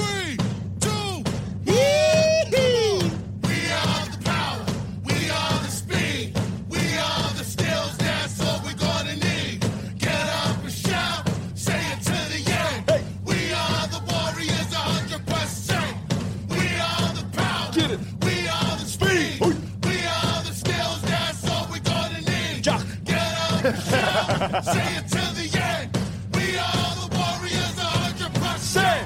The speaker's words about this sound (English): At full time, that 19,000 strong crowd got to belt out the Warriors' winning song,